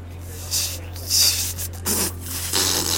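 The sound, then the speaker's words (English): Someone tries to whistle but only blows air, making about four breathy, hissing puffs with no tone, over a low steady hum. “Oh, I can't whistle.”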